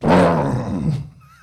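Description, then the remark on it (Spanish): A voice imitates rumbling thunder with a single low, throaty roar that holds loud for about a second, then trails off into a quiet rumble. “¿Sabe cuando tú escuchas aquí los truenos? ¿Sabe los truenos?”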